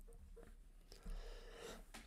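A sudden, breathy sneeze bursts out over a low, steady background hiss, with no talking around it.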